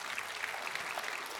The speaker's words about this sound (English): When you do that, you're not clapping for a preacher. We're clapping for God. Amen? We're praising him.